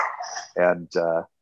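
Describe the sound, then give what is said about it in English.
A dog, Lamb Chop, whimpers briefly, then lets out two short barks in quick succession, with no talking around it. “And my dog Lamb Chop agrees.”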